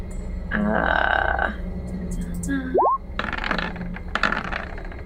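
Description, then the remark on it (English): Dice rolled for an attack clatter and rattle in a quick burst of sharp clicks across a tabletop, following some tonal vocal sounds and a brief rising whistle-like glide. “Let's see how the dice like me today.”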